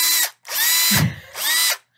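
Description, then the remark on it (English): A power drill whirs in three short bursts, each spinning up and winding down in pitch, with a brief low clunk in the middle. It's loud, with no talking. “You're like, why would I use a screwdriver when I can use a drill?”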